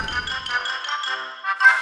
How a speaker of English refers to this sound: I gotta get that doorbell changed.